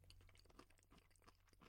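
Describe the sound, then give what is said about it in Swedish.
Someone chewing a mouthful of porridge, soft wet smacking and mashing sounds repeating in an irregular rhythm, with no talking. “Att prova en tugga.”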